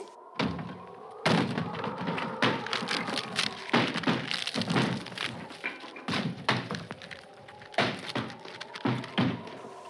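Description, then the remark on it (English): A wooden door is battered and forced open: a steady run of heavy thuds mixed with cracking and splintering wood, fairly loud and continuing throughout, with no voices. “Let's get in this door then.”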